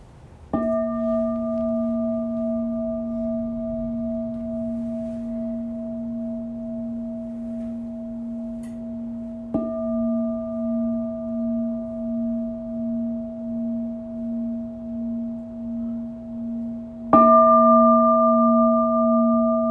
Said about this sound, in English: So with that, I will ask Don to start us off with three bells.